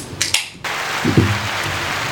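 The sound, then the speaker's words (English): A couple of sharp bursts, then steady applause for a woman guest fills the rest, a dense, even wash of clapping with a brief voice cutting through partway. “I don't understand why she's getting a longer applause than we do.”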